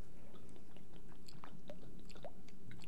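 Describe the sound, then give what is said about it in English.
A plastic water bottle cracks open with a few quiet clicks and crinkles, followed by soft, wet sipping and swallowing sounds as a person takes a first sip of water. No one speaks. “Without further ado, let me crack open my water. First sip.”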